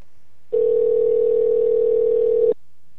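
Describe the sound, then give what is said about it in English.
A single steady electronic phone ringing tone lasting about two seconds, loud, with silence before and after and no voices, as a phone call is placed to add someone to a group call. “It's ringing.”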